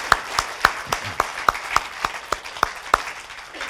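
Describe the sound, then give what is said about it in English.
A church audience applauds to thank the Lord, steady sharp claps landing in an even rhythm over a dense wash of hands clapping, moderately loud, with no one speaking. “Would you give the Lord a big clap and thank him?”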